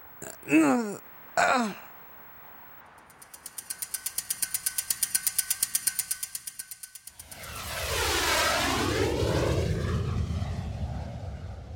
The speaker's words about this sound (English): Piloting a private jet